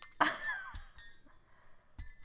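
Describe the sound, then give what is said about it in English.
A bright, high-pitched metallic jingle rings out in one strong burst, then a few lighter shakes follow with shimmering tones that linger and fade. No one speaks. “I guess that was a dingle bell.”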